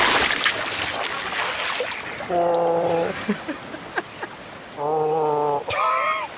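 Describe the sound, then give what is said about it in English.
A burst of rushing, splashing water opens as Muddy Waters, a Swampert, emerges from the water, followed by its loud, tonal bellowing cries repeated several times with short gaps between them. “Meanwhile, what's that? Muddy Waters emerges from the water as a Swampert.”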